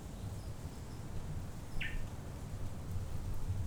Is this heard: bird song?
yes